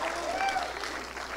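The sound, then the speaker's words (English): Steady, dense clapping from an audience fills the brief moment, a continuous wash of many hands with a faint tonal voice or whistle rising briefly through it. “Clap your hands if you're come on.”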